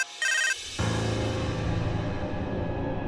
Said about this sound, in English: Then my phone rang.